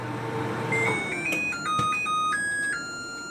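A new LG microwave plays a short electronic melody of bright, stepping beeped notes, each held briefly and changing pitch, with a few soft clicks along the way and no one talking.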